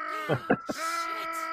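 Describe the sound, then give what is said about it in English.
A man's voice lets out a loud, drawn-out scream. It begins with a few short choppy bursts and then holds a strained, wailing pitch for about a second. “That screams actually me. That's actually leftover Walla from another episode of another show.”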